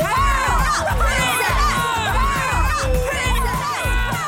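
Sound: crowd cheering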